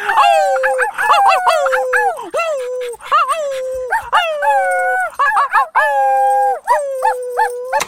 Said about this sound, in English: Oh, I forgot I joined in with the howling.